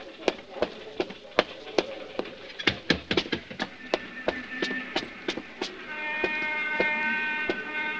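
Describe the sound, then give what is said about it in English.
A series of sharp, irregular clacks and knocks, then a steady, reedy horn blares for the final couple of seconds, holding one bright, buzzy pitch. “But someone honked the horn.”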